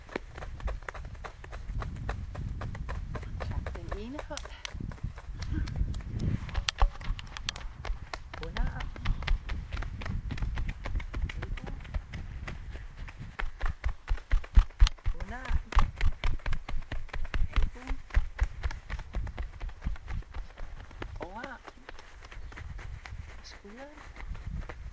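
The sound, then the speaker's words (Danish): Hands pat steadily on a person's own body, on the shoulders, in rapid, uneven runs of soft, dull slaps that continue throughout, while a voice talks over the patting at intervals. “Klap lige jer selv på skulderen.”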